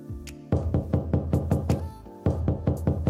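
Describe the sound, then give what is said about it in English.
Someone knocks on a door in two bursts of rapid, loud raps, a run of about eight knocks, a brief pause, then several more, with no talking. “So, you're not going to answer that door.”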